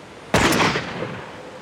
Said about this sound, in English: The shot, fired by a marksman out the window of his squad car